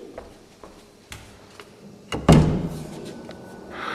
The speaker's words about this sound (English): Door. Who could it be?